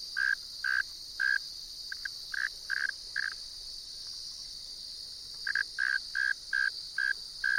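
A male northern mole cricket, an inch-long burrowing species, sings from its burrow entrance in short, regular chirps, a steady pulsing trill repeated in bursts with a pause midway, set against a constant high-pitched insect hiss in the background.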